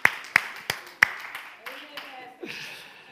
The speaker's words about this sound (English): And sometimes I have to clap for myself when I preach because I know ain't nobody else going to clap their hands.